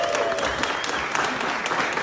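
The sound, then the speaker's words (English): A crowd of conference attendees claps steadily in a dense, continuous round of applause, loud and even throughout, with no voices standing out over the clapping. “It's been a long time coming, so a round of applause for all of you.”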